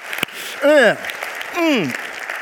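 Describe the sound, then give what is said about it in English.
An audience claps in a steady, moderate patter in agreement with a statement about marriage, and two short rising-and-falling vocal calls ring out over the applause. “Would somebody applaud with me on that?”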